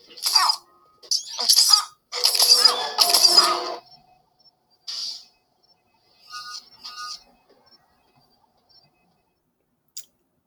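Several sharp hypospray hisses burst out in quick, uneven succession, then a few softer, shorter hisses follow after a pause, ending with a faint tick. No one speaks.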